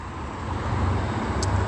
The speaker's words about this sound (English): Omnitrans, bus number 1216 going westbound on Hope Boulevard is crossing path.